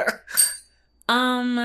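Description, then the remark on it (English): A bell is struck once with a sharp, bright ding that rings out loud and steady for a moment, just after a brief burst of someone speaking. “You better hit the bell and say, actually, if you don't answer, am I gonna answer it?”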